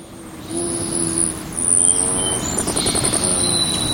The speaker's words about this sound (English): The hummingbird we hear zipping by is likely seeking out red blossoms or making a beeline for a backyard nectar feeder accented with red plastic.